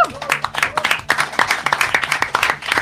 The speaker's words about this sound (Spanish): Un aplauso.